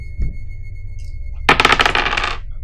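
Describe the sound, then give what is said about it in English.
A lively clatter of two new dice tumbling and rattling across a hard surface for about a second, then settling, with a low steady hum in the background and no talking. “Will you roll for me? Let's go with the two new dice.”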